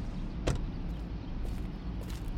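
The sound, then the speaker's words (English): A man walks into a house: a door is opened with a sharp knock-like thud over a steady low rumble, followed by a couple of soft, scattered footsteps. “After nervously pacing in front of the house, as I mentioned earlier, he walks into the door.”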